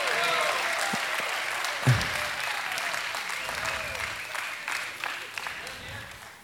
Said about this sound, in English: Let's cheer for him. Come on, he needs some encouragement. He's doing it.